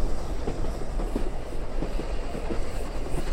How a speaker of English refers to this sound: The train began to slow down as it approached the Zurich station.